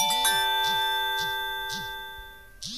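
A Nokia N96 phone buzzes in short, regular vibration pulses while a bright chiming alert tone rings out and slowly fades as a text message is received, fairly clear, with no one speaking.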